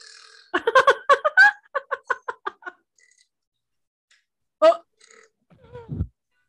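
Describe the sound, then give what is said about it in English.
In a belch-off in a Scooby-Doo cartoon, with Scooby belching, loud, rattling belches trade back and forth: a long, pulsing burp broken into rapid bursts, a pause, then a short sharp belch and a deeper, gravelly one to finish. “Are they going to have a belch off?”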